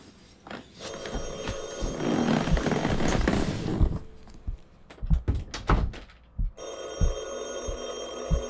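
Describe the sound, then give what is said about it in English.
A landline telephone in a living room rings in a long bright burst, goes quiet amid a few dull thumps and knocks, then starts ringing again, with no one speaking. “It's the living room phone.”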